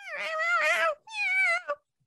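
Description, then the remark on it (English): Two drawn-out, wavering bird screeches from a film that sound strikingly like a cat's meow, followed by a short clipped squawk, loud with no talking. “Birds make bloody weird noises in this film.”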